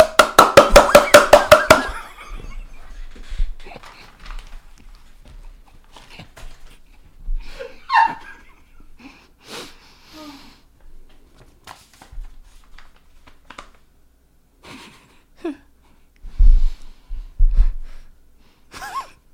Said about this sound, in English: The fast clap. Oh my god, that was good!